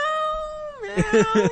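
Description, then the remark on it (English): A voice imitates a cat meowing: a long drawn-out meow that sags in pitch, followed by a few quick, bouncy mews in a rhythmic burst, fairly loud. “Meow, meow.”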